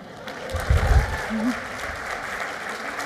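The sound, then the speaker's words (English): An audience applauds the volunteers of a stage demonstration in a steady, dense wash of clapping that holds throughout, with a brief low voice or cheer rising underneath early on. “Can I get one more big round of applause for everybody who volunteered for this?”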